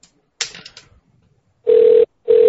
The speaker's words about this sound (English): Electronics never picks up. Do all electronics over there ringing. Just that phone ringing. I ain't answering that phone.